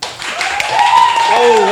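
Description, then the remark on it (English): An audience breaks into loud, dense applause, the clapping sustained for a couple of seconds while a cheering voice rings out over the crowd. “Make sure you applause again. Accordingly with your level of enthusiasm again.”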